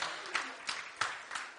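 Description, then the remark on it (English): A group of people clap their hands together in praise to God in a steady rhythm, with sharp, evenly spaced accents over a continuous patter of applause, moderately loud. “Come on, give God a hand clap of praise.”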